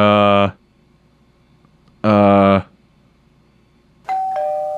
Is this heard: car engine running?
no